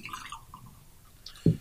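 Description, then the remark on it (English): Beer pouring into a glass, a soft liquid splash and fizz that trails off, then a single dull thud near the end. No one speaks. “And I don't know whether it's carbonated. Let's just have a listen.”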